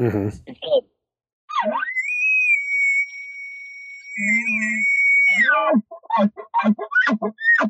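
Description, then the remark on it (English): An elk bugle blown on a latex diaphragm call climbs into a long, steady high-pitched whistle, gains a raspy low growl toward the end as the call is ended a little harder, then breaks off sharply. A man talks before and after. “And I don't think that we can truly, as elk hunters, I mean, as people, as human beings, I don't think that this latex can sound like an elk when it's ending.”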